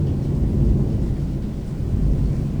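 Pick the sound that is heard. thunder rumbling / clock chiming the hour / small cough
thunder rumbling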